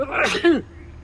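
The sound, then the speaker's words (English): A single sharp sneeze: a breathy, noisy burst followed by a short voiced tail that drops in pitch, then quiet. “Bless you.”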